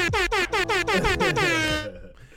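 A loud air horn sound effect blasts in a rapid series of about eight short, stuttering honks, then holds one long sustained blare that fades out.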